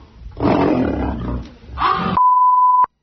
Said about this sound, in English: Here's the audio of what happened. Listen. Hands on the fence. You could hear the lion get ticked off.